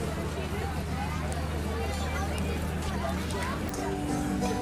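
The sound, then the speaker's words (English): A dense theme park crowd hubbub: many overlapping voices blend into a steady, loud wash of chatter with no single speaker standing out, sustained evenly throughout. “I'm going to pause this out, and I'll be back when I'm out of this crowd.”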